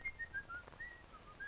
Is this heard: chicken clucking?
no